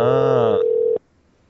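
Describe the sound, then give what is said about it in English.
A single loud, steady electronic ringback tone sounds through a phone line for about a second, then cuts off abruptly into near silence. No one picks up or speaks, and the called line has no voicemail. “But apparently they're not answering the phone.”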